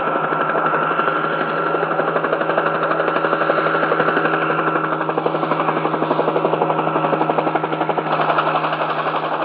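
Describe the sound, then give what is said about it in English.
A helicopter overhead, its rapid rotor thumping layered over a steady engine drone. The sound stays fairly loud and constant for the whole stretch, with no voices. “There's a helicopter.”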